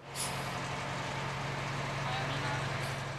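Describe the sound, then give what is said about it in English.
The engine of a 30-ton Israeli military truck, with an artillery unit near the border with Gaza, rumbles steadily and loudly, with a throbbing low drone and brief hissing bursts like air brakes near the start and end. “is behind the wheel of a 30-ton truck.”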